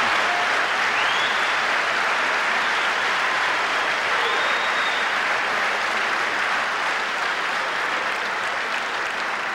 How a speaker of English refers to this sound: I can see from your applause, sisters and brothers, that you agree with the report.